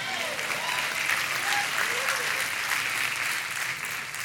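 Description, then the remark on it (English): An audience claps steadily for a few seconds, a dense, even wash of many hands at fairly constant loudness, with faint crowd murmur underneath. “Not one single lady clapped.”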